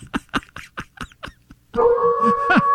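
A dog lets out a quick run of about seven short, whimpering yips, then slides into a sustained, wavering howl, fairly loud, with no one talking.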